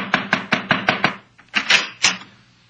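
knocking on a door

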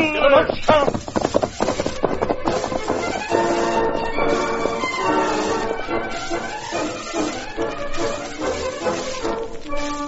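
horse galloping hoofbeats

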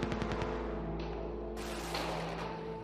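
gunfire

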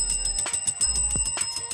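bell ringing

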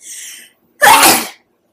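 sneeze

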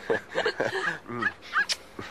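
dog barking and whimpering

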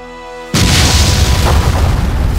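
explosion boom

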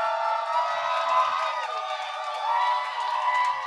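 audience applause and cheering

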